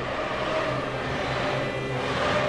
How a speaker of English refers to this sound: Arrives on pole, his car sounding like an angry pterodactyl.